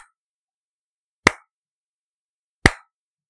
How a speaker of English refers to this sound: I believe that deserves precisely 3 slow claps.